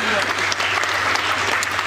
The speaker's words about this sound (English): Yeah, you clap for that. That's right.